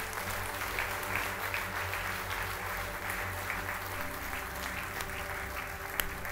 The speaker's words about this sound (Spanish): Le damos un aplauso a los valientes que hicieron esa oración.